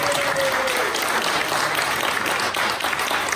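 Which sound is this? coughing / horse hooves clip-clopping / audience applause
audience applause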